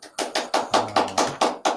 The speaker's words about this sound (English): There we go. Oh, there we go. Hey, you got the applause. Very nice.